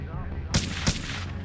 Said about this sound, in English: And when there was only one boat left on the shore, the last one, then they charged. You know, they opened fire, shouting, hands up.